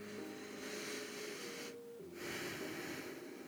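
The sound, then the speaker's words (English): A slow, airy meditative breath drawn in, a brief pause, then a long exhale, soft, with a faint whistling tone in the airflow and no talking. “I want you to close your eyes and breathe in for 3 seconds, then breathe out.”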